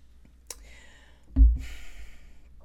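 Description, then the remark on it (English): A quiet sip of water with a soft slurp, followed by a low gulping swallow and an airy exhale afterward; no talking. “Just a second. Water time.”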